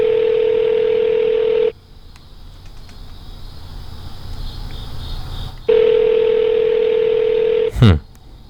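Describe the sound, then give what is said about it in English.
An outgoing Google Voice call's ringback tone: two long, steady electronic rings with a quiet pause between them, clear as if through a phone line, ending in a brief sweeping chirp. “It takes like 4 rings to get through on Google Voice.”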